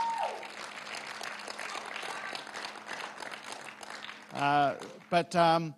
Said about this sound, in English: Well, thank you, everybody, for participating in that. Not only the people who got up and shared, and thank you especially to those people. I think give them all another round of applause.